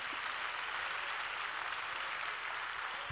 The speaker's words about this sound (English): If you're glad that you know Jesus, clap your hands and praise God.